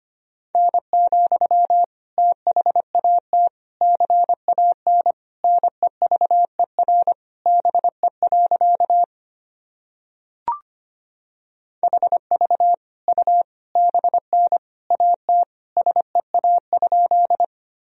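Morse code keyed at 25 words per minute, sending practice sentences built from the top 300 words and abbreviations: a single steady mid-pitched tone beeping in quick dots and dashes, falling silent briefly around a faint click before the fast keying resumes.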